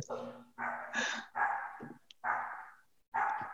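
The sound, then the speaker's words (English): A dog barks repeatedly in a steady series of loud, drawn-out barks separated by short pauses, with no other sounds around them. “Can y'all hear that before we start? Yeah. At least it's not my dog.”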